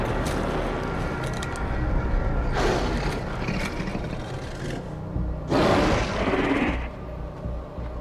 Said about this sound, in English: People, there's a zombie tiger in this bitch. Do you hear that? What the hell is that?